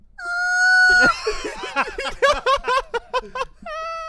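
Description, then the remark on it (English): A man pretends to whistle, producing a thin, strained, high-pitched squeal like a quiet scream under his breath for about a second, breaks into rapid breathy laughing bursts, then returns briefly to the squeaky tone. “He would just like scream a little bit under his breath.”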